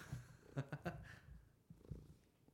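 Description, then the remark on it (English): A female cat purrs right into the microphone, a soft low rumble broken into uneven pulses, with a brief louder cluster of throaty sounds near the start. “She's purring into the mic.”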